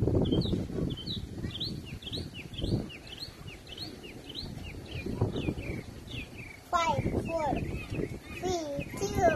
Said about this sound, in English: Anyway, guys, I just wanted you to hear the wildlife. I'm going to hush for a second so you guys can hear the birds.